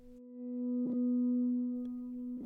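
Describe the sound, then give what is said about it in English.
A steady, buzzing electronic drone holds one low pitch throughout, processed and distorted, with a few brief crackling glitches breaking through. No voices are present. “This documentation contains mention and depictions of psychiatric malpractice, psychological harassment, death, and audio distortion.”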